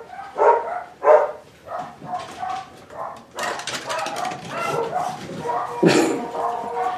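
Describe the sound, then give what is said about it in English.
A dog gives a couple of sharp barks, then keeps up a restless mix of yips, whimpers and whining, fairly loud throughout. “Have dogs, they say.”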